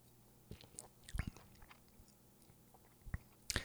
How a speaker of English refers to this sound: Let me just take a real quick sip.